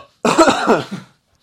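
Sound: cough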